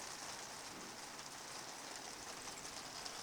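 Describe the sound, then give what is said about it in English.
Heavy rain pelts a tent in a dense, unbroken patter, a steady hiss of countless drops with no voices or pauses. “Can you hear the rain coming down even more heavily now?”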